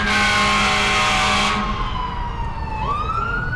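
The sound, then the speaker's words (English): A loud fire engine siren wails with strong sweeping tones, then fades and drops in pitch as it moves away, with traffic rumble underneath and no talking. “Did you guys hear the fire engine come?”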